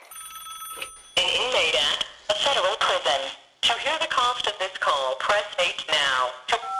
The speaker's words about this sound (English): Towards the beginning of Ponzi Supernova, Fishman describes being at home, watching a football game with his son, when the phone rings. It's Bernie, and he wants to talk.